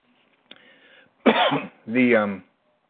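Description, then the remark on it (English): A quick bout of coughing and throat clearing after swallowing wrong: a faint hum, then two loud, rough bursts, the second one raspy and voiced, with no one speaking. “Excuse me, swallowed wrong.”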